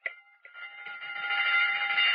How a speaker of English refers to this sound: It had been a long, long afternoon behind the counter, and the girls were glad to hear the closing bell.